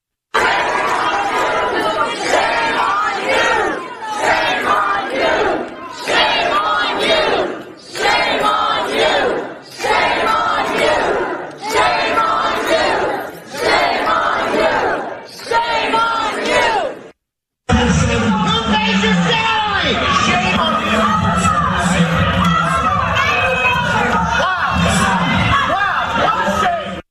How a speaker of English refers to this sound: Now, let's go to the Loudoun County and listen to parents very emotionally yelling at school board members.